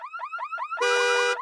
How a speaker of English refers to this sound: And where car alarms seem to be going off.